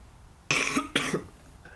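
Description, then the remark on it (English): Two harsh coughs in quick succession from a person with a cold, each a loud raspy burst about half a second long, followed by quiet with no talking. “every time I laugh now I gotta cough.”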